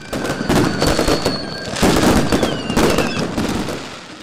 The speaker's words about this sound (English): Up and down the country, crowds have gathered to watch fireworks light up the sky.